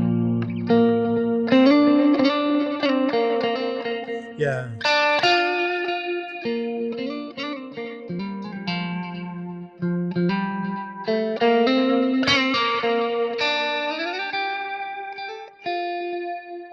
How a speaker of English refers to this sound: Yeah, it's a Jerry Jones choral kind of type electric sitar. And it's a beautiful thing, but it's just one of those things you can only use it very sparingly